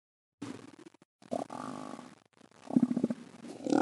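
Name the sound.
elephant seal vocalization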